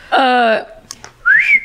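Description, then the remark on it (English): A short vocal 'wheet' imitation is followed by a clear, rising whistled wolf whistle, the catcall guys make at a lady on the street, fairly loud, with a brief quiet gap between the two sounds. “So she says, you know that wheat woot guys do when they're catcalling a lady on the street.”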